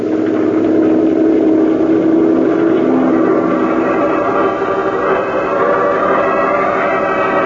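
A patrol boat's engine drones steadily and loudly for several seconds, a rumbling mid-pitched hum with a slight churning texture and no voices or pauses, as the boat heads for a spot on shore near an amusement park and circus.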